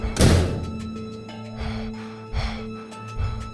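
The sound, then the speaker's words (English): A single heavy thud as a door is shut, a deep impact that rings out briefly, followed by a low hum and a few faint rustling bursts. “I got the door! Get inside!”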